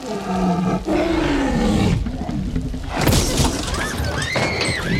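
A loud, drawn-out monster roar like a T-Rex movie effect, layered and growling with sliding pitches, swelling again midway with a harsh crashing edge, filling the whole clip with no talking.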